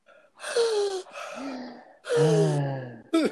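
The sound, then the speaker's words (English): Heavy, exaggerated breathing into the microphone: four loud, rasping breaths in quick succession, some with a voiced, groaning edge, and no speech. “If we keep breathing on our audience like that, they will stay.”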